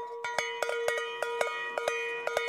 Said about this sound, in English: Isn't that a beautiful thing? That is an original cowbell, Holstein Bell number one, made by Blum Manufacturing Company in Illinois, right?